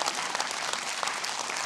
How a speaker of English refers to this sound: Go ahead. If y'all going to clap, you can clap.